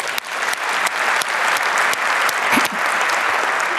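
An audience breaks into steady applause, a dense wash of many hands clapping at an even loudness for a few seconds, with a few sharper individual claps standing out.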